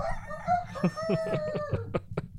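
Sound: rooster crowing sound effect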